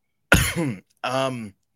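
A man coughs close to the microphone: a harsh, explosive cough followed a moment later by a second, throatier voiced cough, with no talking around them.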